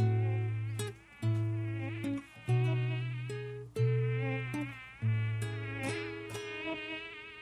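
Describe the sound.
A mosquito's high, whining buzz drones loudly, rising and dipping in a series of swooping passes roughly every second or so, with no voices.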